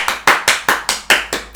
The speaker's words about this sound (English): So I think that I deserve, like, a round of applause. So, give me just a minute to, you know, just clap for me.